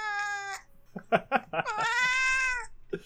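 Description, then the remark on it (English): A cat meows loudly and insistently while being gently held, two long drawn-out yowls bracketing a few shorter chirping cries, with no talking. “This cat is being gently held, and I don't think she's even upset about being held. She just likes yelling.”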